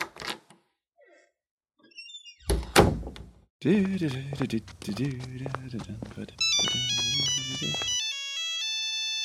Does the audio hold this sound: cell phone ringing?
yes